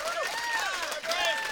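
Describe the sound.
An audience applauds steadily, with a dense wash of clapping and cheering voices rising and falling in pitch over it, fairly loud and continuous throughout.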